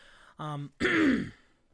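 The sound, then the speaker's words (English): A forceful cough: a short voiced hack followed by a longer, harsh rasping burst, like someone clearing a congested throat, with no talking around it. “I said fucking dies, because you're coughing so hard.”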